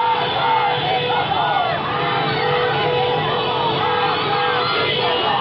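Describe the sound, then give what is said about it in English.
A large street crowd in the center of Tehran, Iran, chants "death to the dictator" and shouts together while cars honk, many voices blending into a dense, continuous roar that stays loud and steady throughout, with individual cries rising and falling above the mass. “People bravely chanting death to the dictator. Cars honking, security forces all over the place.”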